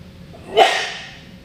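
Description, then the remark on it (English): A single sudden sneeze bursts out of quiet background hiss, a short voiced catch followed by a loud, breathy spray of noise that trails off over about a second. “Bless you, sir. Who was that?”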